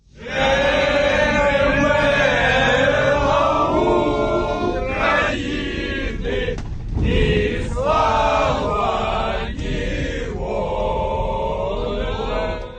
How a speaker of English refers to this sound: Aboard the Ukrainian bus, it was all song and cheer.